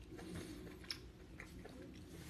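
Quiet chewing of plant-based pasta, with moist mouth sounds and a couple of small clicks or bites standing out over a low, steady background hum. No one speaks.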